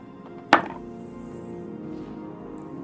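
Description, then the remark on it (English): A single sharp clack of dice hitting a hard tabletop, with a brief rattle as they settle, then only a quiet, humming room with no one speaking; the dice are rolled for an intimidation or deception check in a game. “I'm gonna use my befitting Extinction Curse dice.”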